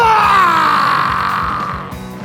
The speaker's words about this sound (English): Love how the squeak of my chair gets picked up by this mic.